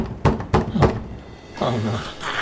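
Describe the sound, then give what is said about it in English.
Three loud, heavy knocks land on a door in quick, even succession on Christmas, followed by a person starting to speak. “Who knocks like that on Christmas?”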